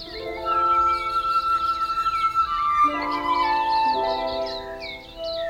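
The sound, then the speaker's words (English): Birds chirp and twitter steadily in the background of a forest beside a campground before sundown, their quick high calls layered over sustained, mellow musical chords that shift partway through. “I catch the Czechs, who guide me up behind cabins to a quieter section, next to a forest filled with birds, as I crawl in before the sun goes down.”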